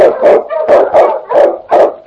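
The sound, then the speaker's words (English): King, an Eskimo lead sled dog in the radio drama Challenge of the Yukon, barks loudly and repeatedly in a steady, rapid rhythm while blazing the trail through storm and snow. There are about seven sharp yelping barks with a howling, drawn-out edge, and no voices. “The Wonder Dog King, swiftest and strongest of Eskimo lead dogs, blazes the trail through storm and snow for Sergeant Preston as he meets the Challenge of the Yukon.”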